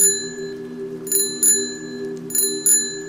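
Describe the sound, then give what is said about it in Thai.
A bicycle bell rings in two quick pairs of bright, metallic dings, each strike leaving a sustained shimmering tone that lingers between the rings, heard from a car driving on a dark, unlit road in heavy rain. No one speaks. “สักพักอ่ะคุณโจ้เขาก็ได้ยินเสียงกิ่งจักรยาน”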